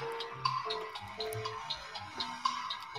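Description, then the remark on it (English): A 60-second countdown timer for a word game ticks steadily at a brisk, even pace, about four clicks per second, over a low sustained musical drone with no one speaking. “60 seconds on the clock.”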